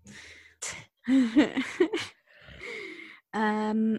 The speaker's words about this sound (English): I'm not yawning because I'm bored. I'm having so much fun. I'm yawning because it's 5:30 in the morning.